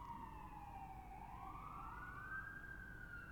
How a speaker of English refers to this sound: Once that fucking fire truck shuts up.